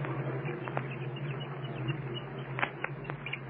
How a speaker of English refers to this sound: You can hear them chirping anyway inside of the egg. There's the thump now. I'm sure you can hear the chicken plainly pounding on the interior of his shell. There's plenty of chatter, too.